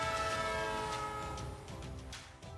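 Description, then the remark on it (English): A train horn sound effect blares in one long, steady, loud blast, with a low rumbling rail noise underneath and no voices. “So hop on our magic choo-choo train to nowhere and let's talk some California politics.”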